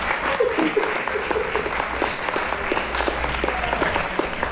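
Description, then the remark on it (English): An audience applauds steadily for several seconds, a dense wash of many hands clapping at once, sustained without pause. “Give me these guys a round of applause.”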